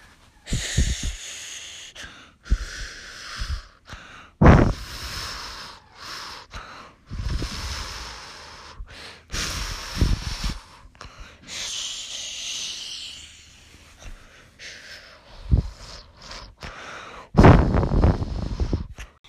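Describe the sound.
A child's voice imitates ocean waves with a series of breathy whooshes and hissing swells that rise and fall irregularly, some bursts noticeably louder than others, with no words spoken.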